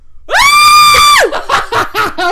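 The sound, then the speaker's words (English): A loud, high-pitched excited scream held for about a second, piercing, then breaking into a quick string of short, breathy bursts like giddy laughter. “sorry to headphone listeners. We've been screaming a lot.”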